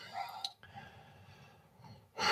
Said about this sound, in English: Start to just breathe a little bit. So breathe through your nose.